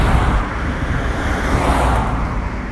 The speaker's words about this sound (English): Oh man, there's so many trucks. What the fuck? Another one. Two more.